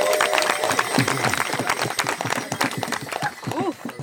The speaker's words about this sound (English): Please, a huge cheer.